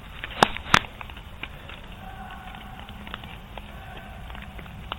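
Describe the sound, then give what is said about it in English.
Two sharp, loud clicks of raindrops striking a recorder in a cemetery last spring stand out early, followed by fainter scattered ticks over a steady, muffled outdoor hiss with a faint hum underneath. “It was raining, so you're going to hear some clicks, but you're going to hear something super creepy.”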